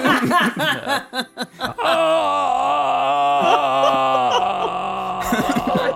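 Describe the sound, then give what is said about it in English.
A voice imitates the soft scream of Bingo, a dog: a few short breathy vocal bursts, then a long, steady, drawn-out wail held for several seconds at an even pitch before tapering into a strained moan. “And the scream he lets out is so soft.”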